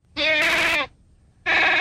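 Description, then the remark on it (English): Two loud, nasal mountain goat bleats, the first drawn out for over half a second, then a brief pause before a second bleat begins, with no talking. “Now, last but certainly not least, this show is brought to you by this week's animal ambassador, the mountain goat.”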